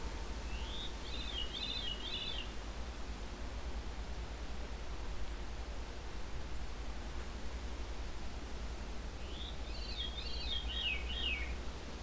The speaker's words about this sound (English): There we go, veery. A veery thrush.